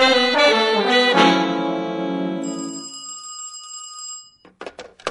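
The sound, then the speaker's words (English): A telephone rings loudly: a bright, bell-like ring that fades slowly over several seconds, followed by a few faint clicks and rustles as it stops. “I need to use the house phone over there.”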